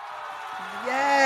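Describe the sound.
A crowd cheers, a dense wash of many voices with whoops and a sustained yell rising in pitch, the noise swelling steadily louder toward the end.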